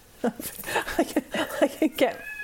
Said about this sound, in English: Should I go and stop my cat meowing? No, I mean, I think he just wants to know where I am.